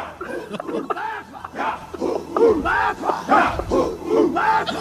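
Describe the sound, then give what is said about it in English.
Several voices bellow a shouted war cry together, a loud run of overlapping whooping calls that rise and fall continuously for about five seconds. “Don't be talking over my war call, dog.”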